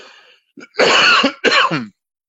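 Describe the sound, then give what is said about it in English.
A loud cough: two harsh bursts in quick succession, preceded by a faint throat-clearing sound, with no talking. “So anyway, sorry for that little bit there, that cough.”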